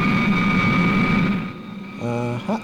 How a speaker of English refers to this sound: Supercar! I can hear Supercar's engines!